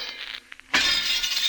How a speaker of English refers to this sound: You make a habit of smashing people's windows